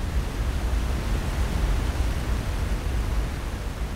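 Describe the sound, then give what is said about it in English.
A steady, unbroken roar of Victoria Falls (Mosi-oa-Tunya) in Zambia, known for the world's largest curtain of falling water: a dense rushing wash of noise heaviest in the low rumble, holding an even loudness throughout with no voices. “Known for the world's largest curtain of falling water.”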